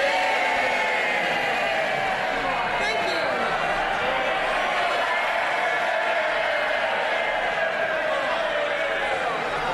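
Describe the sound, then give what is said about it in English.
Labour MPs in the House of Commons roar and cheer continuously as Angela Eagle stands up to the dispatch box at PMQs, a loud wash of many overlapping voices with shouts and calls rising out of it, sustained at steady volume for the whole stretch. “But let's start by listening to the reception that she got from Labour MPs when she stood up to the dispatch box.”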